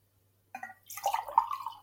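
Water pours into a Spider-Man mug, a short splashing trickle with a ringing tone that holds steady as the cup fills, lasting just over a second with no talking.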